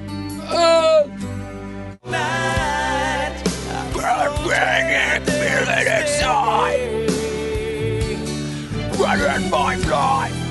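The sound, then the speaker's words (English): A mellow, relaxing song plays steadily with a sustained low bass and melodic vocal lines over it, briefly cutting out near the start before continuing at an even, moderate volume. “We should make this make like an emo version, a scream emo version of this song.”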